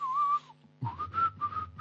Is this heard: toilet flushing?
no